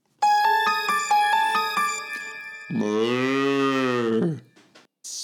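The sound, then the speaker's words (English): A bright, stepped electronic jingle of chiming tones plays, then a single loud cow moo rises and falls for about two seconds before a short trailing sound. “Spirit milk, 100% milk for dead from dead cows.”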